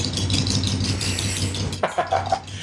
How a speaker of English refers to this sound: My engine's running.